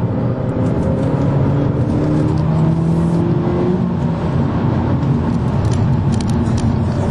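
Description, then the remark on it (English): A sport compact car's engine hums steadily as it drives through mountain curves, its pitch gliding up and down as it accelerates and eases off, with tire and road noise underneath and no talking. “It's a lot bigger and heavier, but it sure feels good going around these mountain curves here.”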